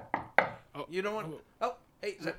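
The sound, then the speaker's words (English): Two quick, sharp knocks on a door land close together near the start, followed by a person talking over the remaining moments. “I bet that's a contractor. Hold on, let me get the door.”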